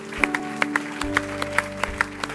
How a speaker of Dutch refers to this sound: Thank you, church. Come on, I want to give these guys a hand right now. Kerk, laat een applaus geven.